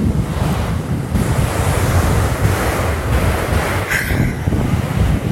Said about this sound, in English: That's when all the words come, but I'm like, oh, I'm at the beach, not a good time for it. But so instead, I'm just going to try this. So yeah, I'm not in a perfectly soundproof room, but what I hope you can hear is maybe the ocean.